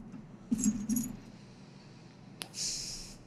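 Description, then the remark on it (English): Keys jangle in two quick bursts of bright metallic clinking, followed by a sharp click and a longer shimmering rattle of keys near the end; no talking. “And then I don't like the way the key be looking when you drop that shit.”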